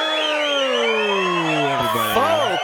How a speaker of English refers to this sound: Take your time cheering. Wow. It's a rowdy crowd.